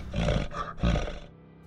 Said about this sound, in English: You hear a large growl coming from just outside the window